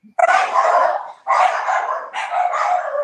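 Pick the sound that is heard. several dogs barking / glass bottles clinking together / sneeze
several dogs barking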